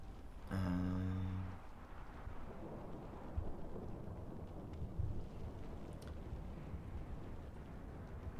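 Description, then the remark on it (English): Thunder from a lightning bolt thrown by Tritus: a loud, sudden thunderclap bursts out with a booming, ringing crash, then fades into a steady low rumble that continues for several seconds with no voices. “You see, Tritus is going to throw another lightning bolt.”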